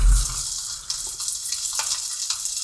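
Steady close-up sizzling of an ingredient popular in Filipino cooking frying in heated oil, recorded with the microphone right next to it; a bright continuous hiss broken by a few sharp crackles and pops, with no one speaking.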